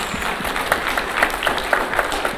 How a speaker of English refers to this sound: Wonderful. Another clap again, please.